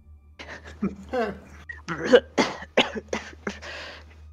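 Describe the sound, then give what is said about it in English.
A person loudly fakes a coughing fit, a run of harsh, wet, sputtering coughs and gagging sounds as if spitting up water, over a low steady hum. “Loud coughing, vomiting of water.”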